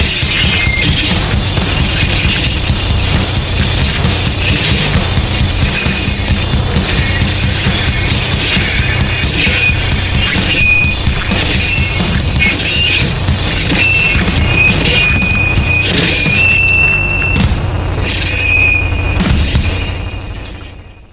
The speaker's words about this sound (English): Oh, no, he also smashes his guitar. Oh, yeah, you know, you're right. He smashes a lot of... Oh, they smash a lot of guitars.